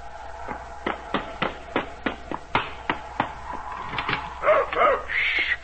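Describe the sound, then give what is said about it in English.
A dog named Pete barks at the door on a cold night in a quick, steady run of about a dozen short, sharp yaps, ending with a few higher, whining yelps. “Cold tonight, hiya, Pete. You always meet me at the door, don't you? Good boy.”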